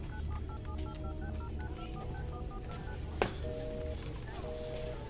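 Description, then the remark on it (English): A rapid sequence of electronic keypad dialing tones, short paired beeps in quick succession, followed by a sharp click and a couple of longer steady tones over a low background rumble. “They have satellite phones, for fuck's sake. How can they all be unreachable?”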